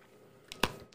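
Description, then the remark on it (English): Crunching of someone biting into a pink hard candy: one loud, sharp crunch in the middle, flanked by a few softer chewing crackles, with no talking. “It gets worse when I bite it, huh? Did you chew it? I'm about to.”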